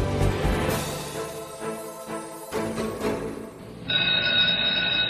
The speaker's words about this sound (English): The bell for the end of the class period sounded.